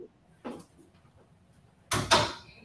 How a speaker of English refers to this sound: Oh, she's opening the door. Well, I think that was the director. Yeah. We heard the door open.